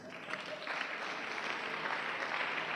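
A crowd claps for Jesus in sustained, dense applause that swells slightly after the first moment and holds steady, filling the room without any voices standing out.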